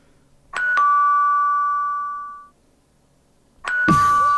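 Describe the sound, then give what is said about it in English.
A doorbell sounds a two-note ding-dong chime as the police arrive at the door; its bright tone rings out and fades over about two seconds, then starts chiming again as a burst of noise cuts in. “Oh, they're here at the door.”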